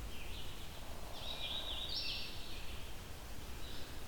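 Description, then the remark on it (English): A rose-breasted grosbeak sings loud warbling phrases in a leafy forest around 9 a.m., one long run in the middle and shorter bursts before and after, over a steady hiss of wind and rustling foliage. “It's a loud bird, so it may not be all that close to me.”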